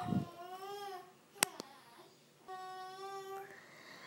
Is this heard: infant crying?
yes